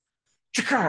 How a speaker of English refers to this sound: A really elegant sneeze.